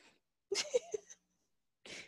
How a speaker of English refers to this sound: He's still breathing heavy, though.